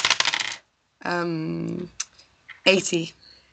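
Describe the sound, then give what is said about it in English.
Dice clatter and tumble across a hard surface in a few quick bursts, with a brief ringing, rattling settle in between; moderately loud, with no clear talking. “God, I'm rolling so badly.”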